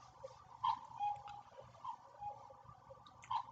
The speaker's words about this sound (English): And maybe I'll wait all day for this cuckoo clock to end. It's still going to beep. Cuckoo, cuckoo, cuckoo, cuckoo, cuckoo, cuckoo, cuckoo, cuckoo, cuckoo, finally.